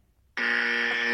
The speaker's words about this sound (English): Yeah, and when I want to know more mind-blowing science, I'm going to ring this little buzzer.